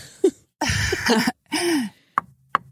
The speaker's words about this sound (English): So, like, not to curse, like, I don't know, do we knock on the wood? I don't know what's the... Yeah, knock on wood, whatever you're going to say.